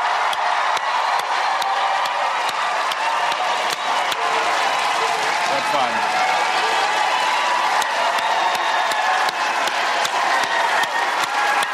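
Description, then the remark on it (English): A large audience applauds and cheers steadily as Stephen Colbert is welcomed, a dense wash of clapping with shouts mixed in, loud and sustained throughout without any break. “You're an amazing crowd.”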